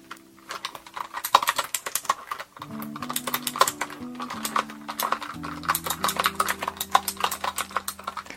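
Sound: computer keyboard typing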